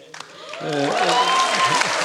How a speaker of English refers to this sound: And on that note, I'd like to introduce tonight's guests. That's where you applaud.